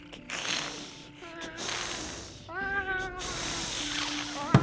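A few short, rising cat meows, fairly close, break through bursts of breathy hissing noise, with a brief sharp click at the very end.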